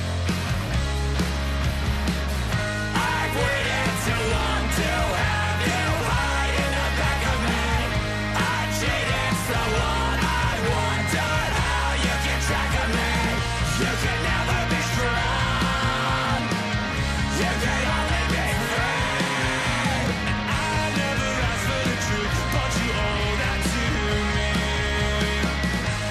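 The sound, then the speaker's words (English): A loud, dense rock track plays throughout with driving bass, distorted guitars and pounding drums, while clean sung vocals alternate with harsh screamed passages over the full, steady mix. “I like the clean vocals. I don't know if it's … doing the screaming”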